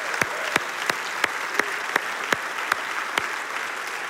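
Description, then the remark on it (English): An audience at a service applauds to cheer on the men at Lorraine Correctional, in a dense, steady wash, with sharp clapping in unison marking out an even beat roughly three times per second throughout. “Hey, would you let the guys from Lorraine Correctional know that you're cheering them on?”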